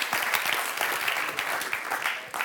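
A church audience applauds steadily during a service, many hands clapping in a dense, continuous patter that stays fairly even in loudness for a couple of seconds, with no voices standing out.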